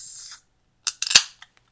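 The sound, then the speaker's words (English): A beer container top pops open: a short airy hiss, a pause, then a quick cluster of sharp metallic clicks ending in one louder snap, with a couple of faint ticks after. “I'm going to pop my top now.”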